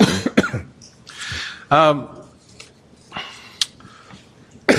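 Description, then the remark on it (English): A man's voice is interrupted by a sharp cough, followed by a few throaty, clearing sounds and short broken bursts before the speech resumes. “I was going to say, and then a cough interrupted me”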